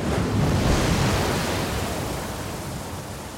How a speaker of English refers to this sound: Out to sea is a wall of water, a freak wave heading their way.